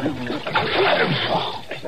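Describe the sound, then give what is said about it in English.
A brief splash of water with a wet, sputtering spray as water is splashed on a man's face to keep him awake after a tooth was pulled, with his muffled groans or mumbling underneath. “Don't let him stretch out again like that, Chester. Splash some more water.”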